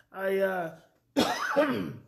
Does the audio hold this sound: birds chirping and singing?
no